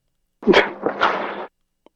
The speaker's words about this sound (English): Yeah, it sounds like someone said Deborah called, but right after they sneezed.